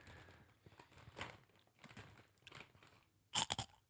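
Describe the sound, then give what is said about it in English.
Crisp crunching and chewing of a non-spicy, tomato-flavoured snack from New Zealand, with soft irregular bites throughout and a louder burst of sharp crunches near the end, no talking. “Like, you can taste it as tomato. I'd eat more of those than the sweet corn.”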